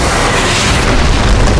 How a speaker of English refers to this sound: Shattered stalactites rained down onto the throne room as Mary smashed through solid rock like a human missile.